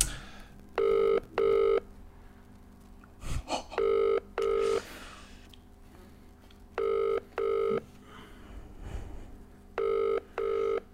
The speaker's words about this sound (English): This isn't looking good. The first dropped call.